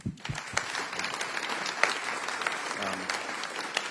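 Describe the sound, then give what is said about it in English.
An audience breaks into steady applause, a dense wash of many hands clapping that starts abruptly and keeps an even, fairly loud level throughout, with a few sharper claps standing out. “I just want to recognize everyone that was part of that and give you a round of applause for that.”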